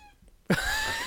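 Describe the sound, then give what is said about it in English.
A loud, drawn-out meow from Toby the cat starts abruptly partway through and holds its tone steadily to the end, after a quiet moment with no talking. “And, Toby, what do you want? Meow!”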